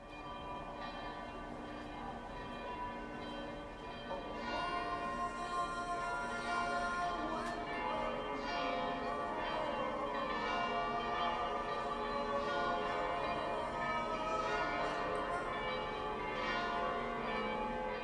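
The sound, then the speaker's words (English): Church bells toll continuously over Sarajevo as the sun rises on the morning of June 28th, their sustained tones layering into a dense, resonant wash that swells slightly partway through and holds steady. No one speaks. “Church bells tolled, and call for prayer rang out from minarets over Sarajevo as the sun rose on the morning of June 28th.”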